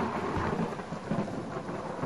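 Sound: rain falling with thunder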